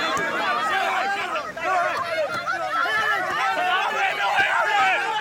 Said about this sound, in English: As they were bundled into a police van, an angry crowd of supporters surrounded it, beating on the bonnet and shouting for the reporters to be allowed to speak.